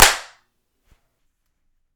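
human body sound, hand clap

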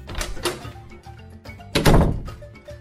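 household object, door being opened

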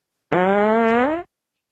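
human body sound, fart sound

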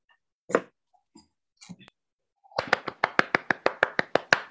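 human body sound, hands clapping in applause

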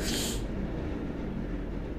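vehicle, passing train

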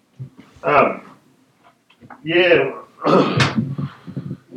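household object, door being shut

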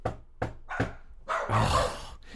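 animal, dog barking

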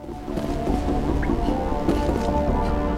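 nature, water dripping

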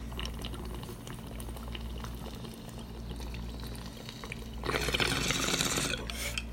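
bubbling water bong hit

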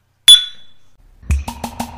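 household object, glasses clinking

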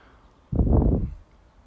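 food or drink, sipping coffee

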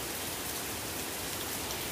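nature, pouring rain

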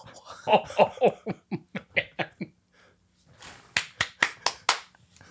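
human body sound, one person clapping hands

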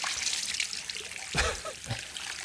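household object, water splashing

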